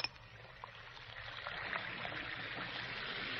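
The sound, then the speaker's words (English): Two Alka-Seltzer effervescent tablets, dropped into a glass of water, fizz steadily: a dense, crackling hiss of tiny bubbles that holds fairly even for a few seconds, with no voices. “You hear that fizzing, sparkling sound?”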